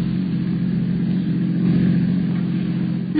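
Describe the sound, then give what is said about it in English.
A car drives toward the dock with a steady, low engine rumble and hum that holds at an even loudness throughout, with no voices over it. “He can't hear us driving.”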